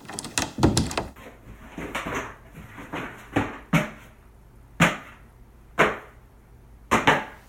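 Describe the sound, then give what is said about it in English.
A door being opened, with a rapid cluster of sharp thumps and rattles, then several more isolated knocks spaced about a second apart. No one speaks. “After a minute, the door opened,”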